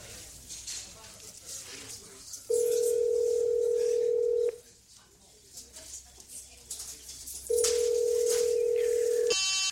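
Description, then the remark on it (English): A telephone line connecting, with two long, steady ringing tones separated by a pause, loud, over faint background ambience and a brief click at the end. “Whenever my phone rings, I look out my window”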